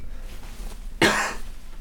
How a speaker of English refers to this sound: Excuse me. You can't cough while we're recording.